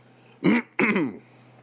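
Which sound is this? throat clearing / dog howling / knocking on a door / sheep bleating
throat clearing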